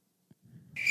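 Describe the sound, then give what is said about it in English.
A shrill, high-pitched cricket chirp sound effect kicks in abruptly near the end and holds steady and loud, layered over a low, soft rumble that builds beneath it. “Got stuck on the cricket, bud.”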